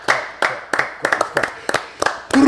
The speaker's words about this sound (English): All right, we're going to kick it off with a round of applause for this. What are we clapping for?